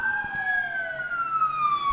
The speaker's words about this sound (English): Sirens. This city is super active tonight.